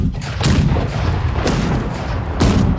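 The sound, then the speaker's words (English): Tank cannons fire in heavy, booming blasts, three sharp reports roughly a second apart, each rolling into a dense, rumbling wash of explosions that fills the background continuously. “The tanks began firing, drowning the god and the old man in a cacophony of explosions.”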